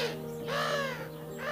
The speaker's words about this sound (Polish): Czasem zjawiają się wszystkożerne, czujne i płochliwe sójki